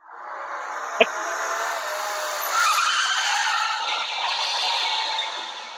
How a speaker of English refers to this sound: Okay, wait. This one is called car skidding.